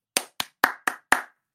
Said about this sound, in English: So I guess we can give him some heads up. Somebody please cue in the hand clap.